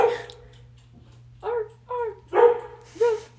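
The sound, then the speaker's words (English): A dog lets out a quick series of short, sharp barks, about five in a row with brief pauses between them, over a faint steady electrical hum. “Hello, dog.”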